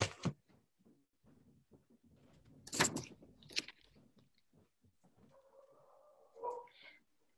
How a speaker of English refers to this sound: Can I just close? I'm really sorry. Yeah, I'll just close the door.